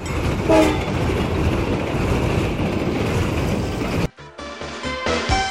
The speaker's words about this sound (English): I hope you're ready for a good ride, because this train is on its way. All aboard!